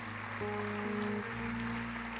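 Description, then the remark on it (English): An audience claps in celebration as people come forward to be prayed over, a steady, dense wash of noise under sustained, held keyboard chords that shift partway through; no one speaks. “Just come, keep coming. Keep clapping.”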